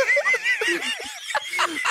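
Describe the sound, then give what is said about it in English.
A person imitates a turkey with a rapid, warbling gobble-like sound, repeated in quick bursts and fairly loud. “Oh, impression of turkeys.”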